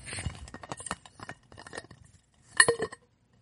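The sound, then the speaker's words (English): A water bottle is opened: quick clicks and rattles of ice cubes knocking inside, then a louder squeaky clink near the end, with no talking. “because when you open it, it makes a very annoying noise that I'm about to do right now.”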